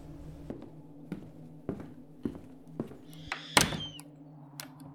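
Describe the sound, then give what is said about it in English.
Doors of a haunted house being shut and locked at a Paranormal Club sleepover: a steady series of dull thunks, then a sharper bang with a brief creaking, rattling edge, followed by a few more soft knocks. Background hum, no talking. “would you please lock the doors so no one bothers us?”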